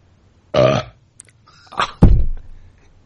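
A short belch rings out, then after a pause a second, deeper and louder burp rumbles for about half a second. Both are loud, with no talking.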